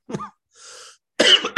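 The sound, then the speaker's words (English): A short burst of coughing: one cough, a breathy wheezing pause, then a harsh, loud cough with a quick follow-up. No one speaks. “That's how I was when I was coughing, man.”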